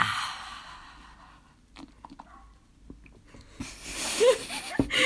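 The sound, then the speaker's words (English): A loud, airy slurp of salted caramel hot chocolate, followed by quieter mouth clicks and then a second drawn-out noisy sip toward the end. “I did not slurp that very well. I slurped that very loud.”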